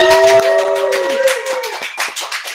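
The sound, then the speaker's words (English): A crowd applauds with steady, dense clapping throughout, while a held tonal note rings underneath at first and fades away after about a second. “Can we give him one more round of applause?”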